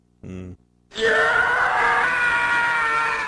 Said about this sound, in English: I like that one, yeah. There we go. That's the Howie scream.